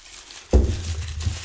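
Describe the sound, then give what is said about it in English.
Rustle and crinkle of tissue paper being unwrapped from a bottle of Patron Silver, a clear hand-blown glass bottle, starting with a soft thump of handling and continuing as a steady papery scrape, with no talking. “Also, every bottle of Patron is wrapped in a tissue paper.”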